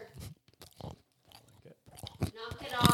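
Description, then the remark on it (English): Crunchy cookie chewing into a microphone: irregular, crackly bites and mashing in short bursts with brief pauses, growing louder and denser toward the end, where a voice briefly overlaps. “Sir. Knock it off. These cookies are delicious.”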